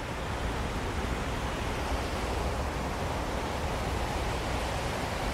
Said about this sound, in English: Water is very special. It's like holy water.